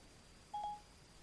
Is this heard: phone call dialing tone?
yes